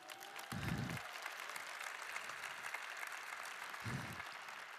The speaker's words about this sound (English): Get up. There they are. Can we clap it up for my homies?